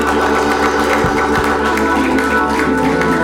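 A crowd claps hands steadily and loudly to thank God, a dense wash of overlapping claps over sustained organ-like music, with no voices standing out.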